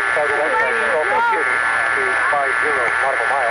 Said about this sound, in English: That's the HIWAS on there, right? The HIWAS and your Morse code identifier.